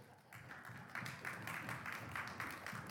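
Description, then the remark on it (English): A crowd at a gospel gathering claps and makes noise after being asked to clap, use their feet or bang their chairs. It is a steady dense patter of hands with scattered louder bursts rising through the few seconds, no clear voices on top. “Maybe do that with your feet or clap your hands or, you know what I mean, or just stick them up in the air or something like that.”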